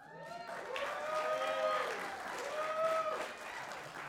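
A crowd claps steadily for about four seconds, with loud rising and falling whoops and cheers riding over the dense patter of applause before it begins to taper.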